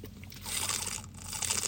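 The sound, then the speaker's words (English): A noisy sip from a water bottle, with a rough slurping hiss and crinkly plastic sounds lasting under two seconds. No one speaks. “I'm going to take a sip of water.”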